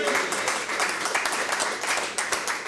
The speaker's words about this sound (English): Big round of applause. Well done.